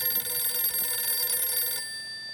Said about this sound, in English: The following evening, Joan's phone rang.